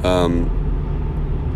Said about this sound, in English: So right now I'm on my way to work. Nice and early, dealing with traffic, all that good stuff.